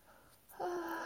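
After a quiet moment, a nearby snore starts abruptly: a steady, nasal, wheezy drone that holds for about half a second.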